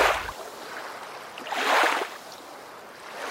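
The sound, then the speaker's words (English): River water rushes and gurgles steadily, with a louder splashing surge swelling up in the middle before settling back to a constant flow. No voices are present. “God told Gideon to take his soldiers down to a river for a drink.”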